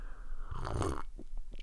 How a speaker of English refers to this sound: I'm going to sip on my black coffee.